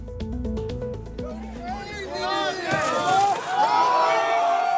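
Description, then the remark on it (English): A rapid run of sharp pops and bangs gives way to a large street crowd in San Francisco's Chinatown shouting and cheering loudly, many overlapping excited voices filling the air, as the crowd sets fire to a Waymo self-driving car with a firework on a Saturday evening. “A crowd sets fire to a Waymo self-driving car with a firework in San Francisco's Chinatown.”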